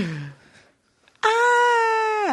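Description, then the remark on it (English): A voice imitates a child screaming so loud that the voice cracks: a brief lower vocal sound, a short pause, then a loud, shrill, sustained cry held steady for about a second before cutting off. “I hate when kids scream so loud their voice cracks.”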